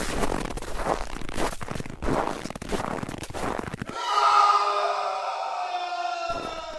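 Footsteps crunch on squeaky snow: a few seconds of rhythmic, gritty crunches, then a sustained high-pitched squeak with ringing overtones, loud and with no voices.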